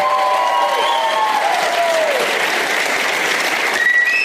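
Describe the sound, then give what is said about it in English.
Steady, loud audience applause for Graham Elwood at a show fills the whole stretch, with several high, sliding whistles cutting through near the start and another sharp whistle toward the end. “Oh, whistling. More whistling.”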